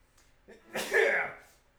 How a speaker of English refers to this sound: Hold on, I'm gonna sneeze.